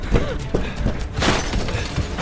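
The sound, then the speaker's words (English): Glass shatters in a loud, bright crash about halfway through, followed by scattered tinkling debris, with dull thumps and bangs leading up to it amid a noisy, chaotic background. “That glass won't hold them much.”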